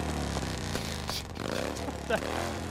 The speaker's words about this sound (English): I've got a motorbike. You've got a sound effect of a motorbike. It's brilliant.